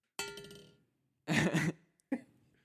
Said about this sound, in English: That was the dinner bell.